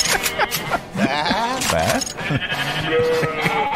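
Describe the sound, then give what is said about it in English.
A sheep in grasslands bleats loudly, a wavering, quavering call repeated a few times over a few seconds, with some background noise underneath. “That's when they saw a strange sheep in the grasslands.”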